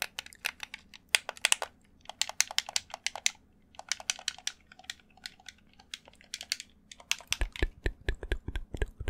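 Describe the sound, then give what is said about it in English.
Rapid bursts of crisp plastic clicks from game controller buttons while playing the survival game Stranded Deep on PC, tapping in quick irregular clusters with short pauses, then a heavier thumping run of presses near the end. No talking. “ASMR Playing Stranded Deep Survival Game! (CONTROLLER CLICKING)”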